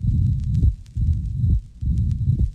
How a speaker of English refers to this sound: The quality of a heart sound is important. Here is a mitral first sound, which is sharp.